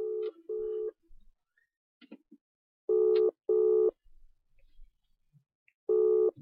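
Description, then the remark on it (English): A telephone ringback tone sounds in repeated double bursts, pairs of short steady buzzy tones separated by pauses, with faint dialing clicks and blips in the quiet gaps, as a phone call interview is placed on the Voice of the Hidden Talent Show on Taritakumi FM. No one speaks. “Otherwise, enjoy, and we're going to conduct the phone call interview with a wonderful guest from, yeah.”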